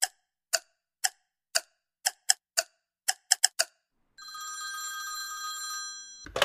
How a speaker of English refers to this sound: So let's put our phones down and see if it rings one more time.